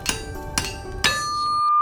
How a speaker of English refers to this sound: then goes back to hammer, hammer, hammer.